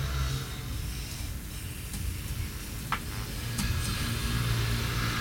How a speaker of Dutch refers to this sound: Hoor eens even, het verkeer raast voorbij. Ja, ach. Ik heb er nu niet heel veel last van met mijn koptelefoon. Als ik een gehoorapparaat, nou ja, een gehoorapparaat in heb, nou, dan ja, hoor ik het natuurlijk wel.